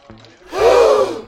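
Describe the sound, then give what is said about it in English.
A group of onlookers at a card game lets out a sudden, sharp gasp as a player pushes all his chips forward and goes all in for 25 million, a loud breathy intake that swells and fades within about a second, with no talking. “There was a gasp from the onlookers.”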